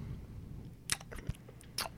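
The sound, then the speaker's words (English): A woman with pigtails at a counter chews gum loudly, with several wet, sticky smacks and clicks in an uneven rhythm over a low, steady background hum. Nobody speaks. “And then at the counter there is a woman with pigtails, and she is chewing gum loudly.”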